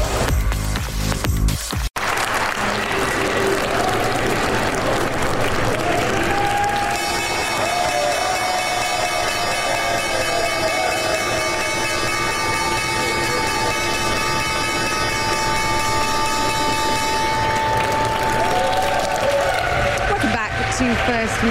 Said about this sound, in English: From the New York Stock Exchange and the opening bell in Tuesday's session.